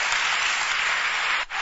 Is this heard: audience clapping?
yes